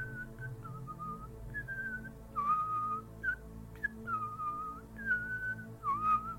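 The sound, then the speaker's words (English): Someone whistles a slow, wandering melody of sustained notes with gentle slides between pitches, fairly clear and steady over a low background hum, with no talking. “And is the dude still whistling?”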